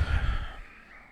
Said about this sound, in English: that was a hard breath into the mic. I apologize for that. I'm trying not to.